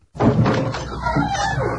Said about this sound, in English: Who could that be? Surely he can't be... Let me just open the door a crack.